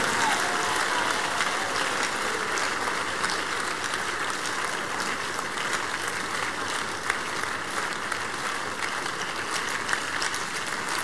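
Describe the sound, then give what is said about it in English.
Sustained applause from a large crowd, a dense, steady wash of many hands clapping at once, fairly loud and continuous for the whole stretch with no voices standing out. “Are you tired of clapping?”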